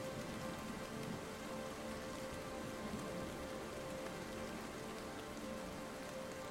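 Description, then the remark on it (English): Steady heavy rain pours down in a dense, continuous hiss, with a low rumbling undertone suggesting a storm. No voices, just the unbroken wash of rainfall throughout. “Maybe the storm sounds mask me or something.”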